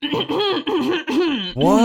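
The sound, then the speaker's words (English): A voice imitates obnoxious, exaggerated throat clearing: four loud, strained, groaning bursts in quick succession, each voiced and wavering in pitch, with the last one rising and drawn out. “So then I do it, like, really obnoxiously.”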